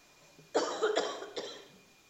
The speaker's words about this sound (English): And I'm going to cough and drink water first.